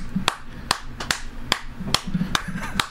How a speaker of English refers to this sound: Gainesville, you gotta clap, man. Why? Part of the everyone stop and clap part.